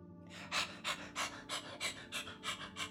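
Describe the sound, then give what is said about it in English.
Shimmers, a fake puppy made of photons that looks like a husky, pants steadily: about ten quick, breathy huffs in a fast even rhythm, each a soft hissing burst with no voices over it. “Who's a good puppy?”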